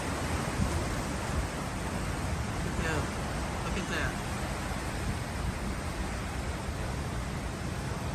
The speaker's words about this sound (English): All this rain really has nowhere to go. We're here this morning in Fryman Canyon here in Studio City. This is a road that this morning looks like a raging river, and the current here is so strong.